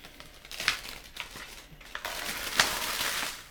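Paper backing being peeled off a sticky sheet, a continuous crackly rasp with small crinkling bursts over a few seconds, no voices.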